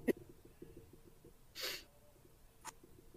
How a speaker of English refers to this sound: Gosh, I've had a cough lately. Couldn't tell if you were coughing or having a demon just possess you.